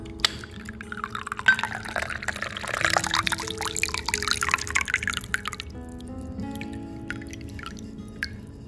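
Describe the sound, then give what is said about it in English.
Coffee pours steadily into a glass jar, a gurgling stream that swells for a few seconds, then thins to drips and a few light clinks of glass. “Do you want to pour to the fairy jar?”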